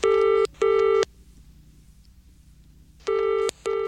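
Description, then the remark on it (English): A telephone rings to open the callers segment of a show, with the classic double ring, two short bursts, a pause of about two seconds, then two more. The tone is steady, bright and loud, with no voices. “So let's move on to... lovely caller inners, and they start with one of these.”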